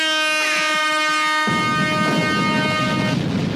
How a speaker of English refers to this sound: Those are celebration horns and explosions.